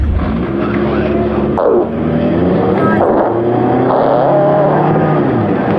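A car engine revs loudly and continuously, its pitch sweeping up and down several times as the driver blips the throttle, with a strong low rumble throughout and no voices.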